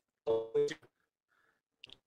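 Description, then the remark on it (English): A voice over a phone line comes through choppy and robotic, a couple of loud buzzy bursts followed by dropouts and faint, clipped fragments. “He's doing his Johnny Five imitation from Short Circuit.”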